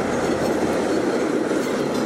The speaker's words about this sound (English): Another train racing back, another Via Rail.